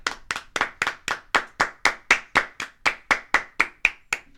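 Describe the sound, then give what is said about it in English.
Steady hand clapping, roughly seventeen sharp, crisp claps in an even, brisk rhythm with no one talking over them. The claps stay fairly loud and consistent from start to finish. “When was the last sometimes time you let out a good clap?”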